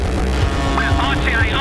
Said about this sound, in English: to 4 in the morning, and the West Midlands police video car is chasing a stolen motorbike. Now approaching our left hand bend, it's not reducing speed very much at all.